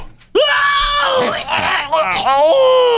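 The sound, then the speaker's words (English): A voice imitates pig noises with loud, high, wavering squeals, a sustained squealing cry that breaks briefly a few times before rising again and trailing off. “That's making pig noises.”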